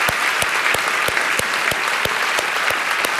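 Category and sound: crowd, audience applauding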